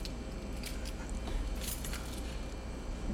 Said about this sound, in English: It's the ambient sound of keys rattling